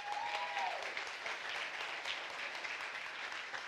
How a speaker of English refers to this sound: Would you guys give him another round of applause?